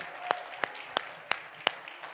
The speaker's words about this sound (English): Clap your hands like that's your testimony right now.